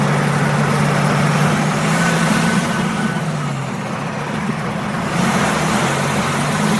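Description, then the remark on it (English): A heavy Caterpillar C15 diesel engine in a Kenworth T908 truck rumbles steadily, a deep throbbing drone with a brief dip in intensity midway before returning to full power. No voices. “The truck was a C15 Caterpillar-powered Kenworth T908.”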